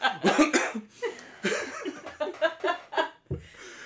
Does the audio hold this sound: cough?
yes